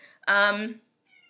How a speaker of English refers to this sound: Sorry, my cat's meowing. He wants to be a part of every broadcast.